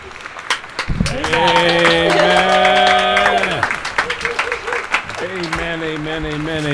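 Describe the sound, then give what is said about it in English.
Steady crowd applause crackles throughout, with sustained tonal voices or chords swelling over it in two long stretches, briefly thinning in between. “There's your applause.”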